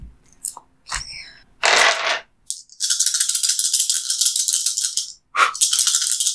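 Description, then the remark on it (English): Dice rattle in a cupped hand: a few sharp clicks, a short burst, then a long, busy clattering shake that stops briefly and starts again. No one speaks. “I blew on the dice.”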